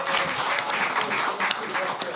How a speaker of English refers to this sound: Round of applause.